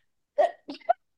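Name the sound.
sneeze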